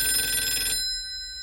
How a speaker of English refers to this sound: Now, when you hear, say, Mrs. Grundon's phone ring during an Abysmal Point sketch, that's an actual phone right here on the table in front of me, wired up to a box that feeds 90 volts to the ringer when I press a button.